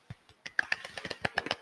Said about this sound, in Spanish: Aplauso chiquito. Aplauso ASMR.